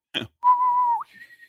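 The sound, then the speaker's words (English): A bosun's whistle call: a short breathy burst, then a long steady whistled note that flicks upward into a higher, softer held tone. It is clear, with no talking. “All you need is a bosun's whistle and we're good to go.”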